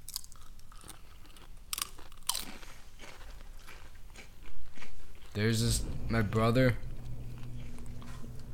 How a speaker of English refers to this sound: As the garage door shuts. Oh, sorry about that.